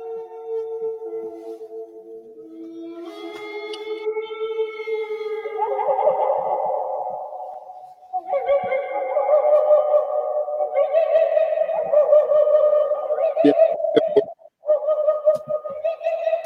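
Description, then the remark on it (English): An imagined Quetzalcoatlus pterosaur call: loud, echoing tonal cries with sliding, warbling pitch, rising and falling in long overlapping waves for about sixteen seconds, no voices, with a brief dropout near the end. “It's Quetzalcoatl right now. Like that?”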